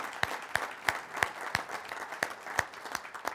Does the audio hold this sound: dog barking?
no